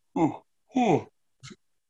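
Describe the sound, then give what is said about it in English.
A drawn-out vocal yawn, breathy and voiced, with pitch sliding downward in two long swells and a brief clipped tail at the end, heard on its own with no words. “Excuse me, the yawn there.”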